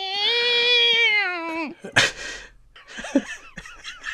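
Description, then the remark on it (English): A real cat, not a sound effect, gives a long, sustained meow with a steady, bright tone that bends downward at the end, followed by a sharp burst of noise and some short, muffled vocal sounds. “I'll have you know that was a genuine cat.”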